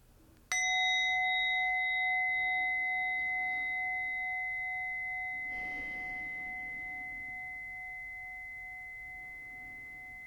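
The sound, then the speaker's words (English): A single meditation bell is struck once to end a meditation, ringing out clear and bright with several steady tones that slowly fade over a long sustain. No one speaks. “Now, as I invite the bell to end our meditation, I invite you to take 3 deep, full breaths.”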